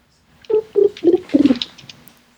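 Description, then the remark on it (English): A bird calls with four short, rhythmic notes, each a low hooting burst, heard clearly against a quiet background. “it sounds like there's a bird over there.”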